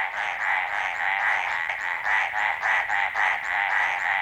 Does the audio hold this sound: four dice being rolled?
no